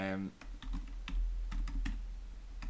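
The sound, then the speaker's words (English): Rapid, irregular clacking of computer keyboard keys as someone types a Google search, prominent, with a brief bit of voice at the very start and a low background hum throughout. “are you ready for Josh's loud typing?”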